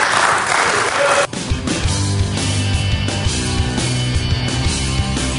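A short burst of audience applause, dense and fairly loud, lasts about a second before cutting abruptly to steady music that carries on to the end.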